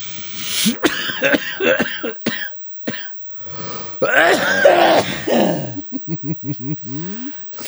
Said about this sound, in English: Oh, why's that cough? Why's that cough be worse?